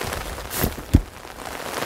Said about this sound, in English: We are back at the neighborhood and talk on Stefanie Street. Rain suddenly begins to pour down on us. We open our umbrellas.